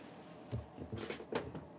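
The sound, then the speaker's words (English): A cupboard door being opened to take out newly bought school supplies: a handful of quiet wooden clacks and light knocks in quick, uneven succession, with no talking. “So let me open my cupboard.”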